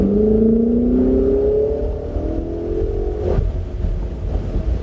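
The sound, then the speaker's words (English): A race car engine on a racetrack revs loudly and climbs steadily in pitch as the driver gives it gas to accelerate, with a heavy low rumble and a brief sharp shift partway through, no voices. “Go ahead, give it gas.”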